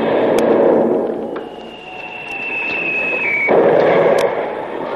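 A shell whistles in on a thin, slowly falling tone, then strikes a ship with a loud, rumbling crash of impact, carrying away the rudder. Steady roaring noise fills the whole clip, and no one speaks.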